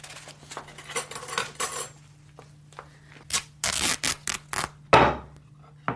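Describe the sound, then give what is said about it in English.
Someone in a kitchen rummages through a drawer of cutlery for scissors or a kitchen knife: irregular metallic clinks and scrapes, fairly loud, ending in one sharper clatter. “Get me a pair of scissors or a kitchen knife.”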